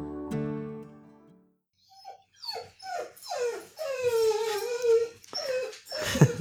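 A dog in a room whimpers and whines in a string of high, wavering cries, rising into a long drawn-out whine, after a brief low tonal note at the start.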